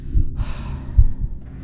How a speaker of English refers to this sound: You can hear your heartbeat. Your heavy breathing.